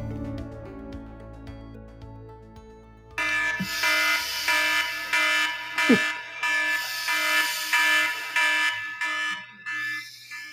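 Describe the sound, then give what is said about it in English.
A fire alarm blares in loud, rhythmic pulses of harsh buzzing tone, starting abruptly after a few seconds of steady droning and repeating insistently until the end, with no voices. “you heard the alarm sounding.”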